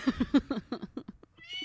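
A cat meows loudly in a quick run of short, harmonic cries, about six or seven in a row, tapering off with softer chirps at the end; no talking.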